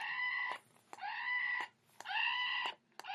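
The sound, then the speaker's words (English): A squeaky novelty toy donkey lets out loud, shrill electronic screams, about four harsh bursts in quick succession, with faint clicks between as it's pressed again. “When you press it, it screams.”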